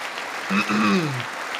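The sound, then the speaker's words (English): Steady audience applause during a State of the Union speech fills the whole clip as a dense, even wash of clapping, with a voice briefly rising over it midway and then falling away. “Because half of it's clapping.”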